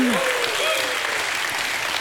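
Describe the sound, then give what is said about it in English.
An audience gives God a hand clap and a shout of praise, clapping steadily in a dense, even wash of applause, with a rising-and-falling whoop at the start and scattered shouts mixed into the crowd noise. “If you're thankful today that you've been picked up, brought out, and carried through, somebody ought to give God a hand clap and a shout of praise.”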